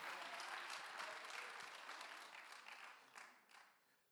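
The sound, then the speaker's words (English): A church audience claps for Jesus in a dense, sustained burst of applause that stays steady, then slowly thins and fades toward the end, with no voices rising above it. “If you believe that for you in your house, give Jesus a clap hand and shout unto God with a voice of triumph.”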